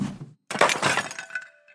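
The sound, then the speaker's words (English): A dull thump, a brief pause, then a loud crash as a large clay jar is knocked over and shatters into many smaller pieces, with shards clinking and ringing as they scatter and settle. “The loud crack rang throughout the village as the clay jar shattered into many smaller pieces.”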